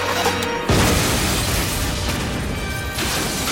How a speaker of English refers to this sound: That's a wonderful explosion. Ah, really, really well done. Pretty cool.